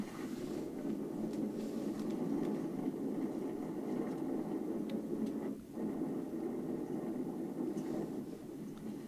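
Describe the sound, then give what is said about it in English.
A small motorcycle carrying two people, one wearing a head cam, drones steadily as it cruises down a wooded road, mixed with constant wind rush, loud throughout, with one brief dip partway through. “There's two people on a small motorcycle, one with a head cam, taking a cruise down a wooded road.”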